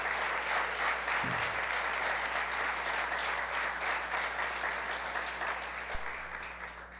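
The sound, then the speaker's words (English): A crowd gives the Lord a clap offering for Leola's life: sustained applause, a dense steady patter of many hands clapping for about seven seconds, fairly loud and even throughout with no voices standing out. “And I think just to begin everything, it would be very appropriate if we could give the Lord a clap offering for Leola's life and everything that she meant to us and what she did to the Lord.”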